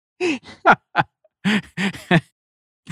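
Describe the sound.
A person imitates a goose honk, saying hi in a goose voice, with a quick series of short, nasal, strained vocal bursts, about eight of them in an uneven rhythm, each fairly loud and abrupt.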